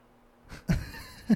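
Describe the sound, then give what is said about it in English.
Two short, muffled barks from a dog outdoors, fairly quiet, with a brief gap between them and faint background noise. “Hear the dog outside.”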